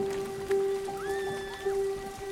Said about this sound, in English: It's a wedding getting rained out.